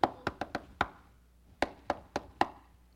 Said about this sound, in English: And as you read the further on into this chapter, Peter comes knocking at the door.